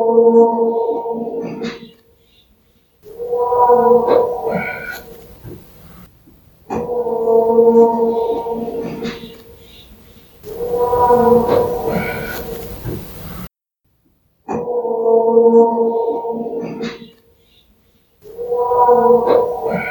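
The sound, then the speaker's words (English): A mysterious howl from unidentified wildlife rises in long, drawn-out wails, repeated about six times with short pauses between, loud with a harsh, yowling tone and no talking. “Typically, these mystery howls are easy to write off as a coyote, elk, bobcat, or some other benign wildlife. But this one is different.”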